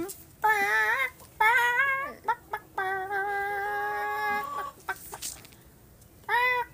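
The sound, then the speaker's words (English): A person imitates chicken clucking and chickens answer: loud clucking and drawn-out squawking calls come in several bursts, including one long sustained call in the middle, with short sharp clucks between and quiet gaps. “Wait, let me speak chicken real quick.”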